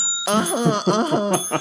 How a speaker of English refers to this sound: And the bells, the dingers, also make our show different.